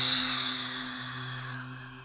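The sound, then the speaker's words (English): A single long, breathy exhale through the mouth with a soft voiced "ah," pushing the air out after a held breath in a breathing exercise, gradually fading over about two seconds, with no other talking. “So you're breathing out through the mouth with the ah sound.”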